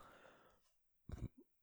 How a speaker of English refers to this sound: I think I just burped.